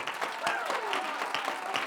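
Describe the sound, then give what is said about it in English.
An audience claps steadily, sharp hand claps in a fast rhythmic beat, while voices shout and call out over the clapping, with a rising and falling vocal cry running through it. “Don't let the devil convince you that you're not good enough to clap. Turn it loose right now.”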